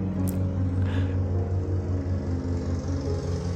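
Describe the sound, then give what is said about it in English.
A lawnmower engine drones steadily outside on a lawn, a continuous low, buzzing hum with a faint rhythmic throb and no voices. “Oh, as you listen to the sound of the lawnmower outside in my lawn, we pray that you have a far more ecological afternoon than I'm currently having, and that you lead your ways into new grief and kinship with the world.”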